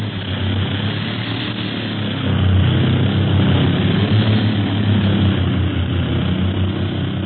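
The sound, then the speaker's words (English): A propeller airplane engine drones steadily and loudly in flight in windy weather, a continuous low throbbing hum with a rushing edge that swells slightly partway through. No one speaks. “Hey, it's getting windy around here. Plane's bucket.”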